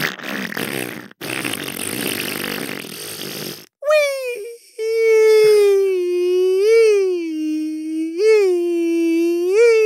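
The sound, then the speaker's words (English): A voice imitates a motorcycle engine made of farts, as a man pretends to ride a motorcycle around: first a rough, sputtering raspberry like a fart, then a long buzzing vroom whose pitch swoops up and down, fairly loud and with no other talk. “And … pretends like he's on a motorcycle, and he starts going around. But the sound of the engine is his farts, and he goes...”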